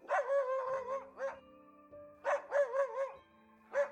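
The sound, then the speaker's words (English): Tracking dogs, brought in to follow a man's scent, bark and bay in a series of drawn-out, wavering calls, loud, with short pauses between bursts over a steady low hum. “Dogs were brought in to track Gary's scent.”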